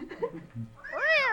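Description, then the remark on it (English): A single drawn-out cat meow rises and falls, clear, following a moment of soft, muffled low sounds. “I'll knock the compelling cat out.”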